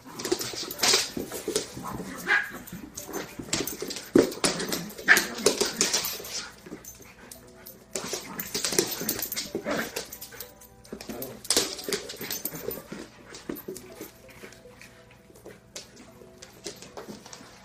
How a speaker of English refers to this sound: So here you go. Here's a puppy playing with an older... What are these? Poodles? These are poodles. Adorable poodles.